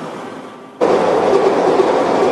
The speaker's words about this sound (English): Metro Vancouver residents are getting fed up with SkyTrain rail noise. There's some days where it is louder than others. You can hear it like more at night than in the day. With time, you can adjust, but that doesn't mean that it is not noisy.